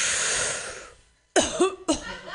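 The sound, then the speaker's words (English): A long breathy hiss fades to a brief silence, then two sharp, raspy coughs burst out after using a new vaporizer, the second following about half a second after the first. “I shouldn't cough with this new vaporizer, right?”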